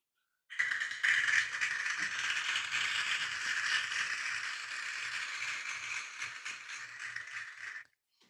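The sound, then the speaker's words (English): A clapping sound effect played on a phone from YouTube: dense, crackling applause from many hands that starts abruptly, holds steady for about seven seconds, then cuts off, with no voices over it. “George Floyd's killer was convicted on all three charges, which is poggers, clap. I gotta find the sound effect on my phone.”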